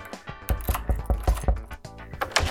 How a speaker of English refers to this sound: Oh, the door. Sorry about that.